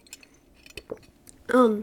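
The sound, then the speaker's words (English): Someone takes quiet sips of lemon water, with faint wet mouth clicks and a brief slurp, followed by a louder voiced, satisfied exhale at the end. “Need my lemon water.”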